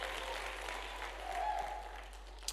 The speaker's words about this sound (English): Come on, can we give a clap offering of praise to our Lord God?